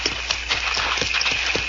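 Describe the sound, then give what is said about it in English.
Horses' hooves clip-clop at a steady walking pace as they are led out of sight, several sharp knocks spaced about a quarter second apart, over a constant hiss of background noise. “Let's get these horses out of sight.”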